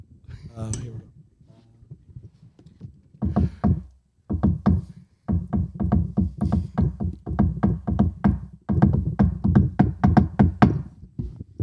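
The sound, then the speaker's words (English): A long, elaborate knocking pattern on a door, the special knock printed on a 'grapes' ticket: dozens of sharp, hollow raps in quick rhythmic bursts separated by short pauses, fairly loud and steady, after a brief murmur at the start. “Dude, what was the knock on the door they put on the grapes ticket?”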